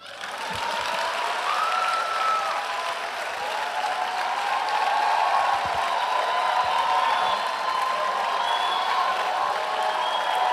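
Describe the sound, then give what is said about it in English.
A crowd applauds steadily, with dense, sustained clapping and scattered cheers and whoops riding on top, holding loud and even for about ten seconds. “Clap for me.”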